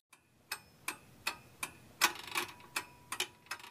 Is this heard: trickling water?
no